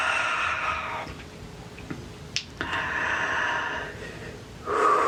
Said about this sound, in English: One more nice deep breath.